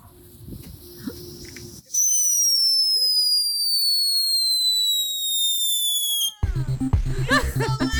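Fireworks lit outside Slap Studios at Christmas go off: a loud, high whistle slowly falls in pitch for several seconds, then breaks into a rapid series of sharp crackling bangs.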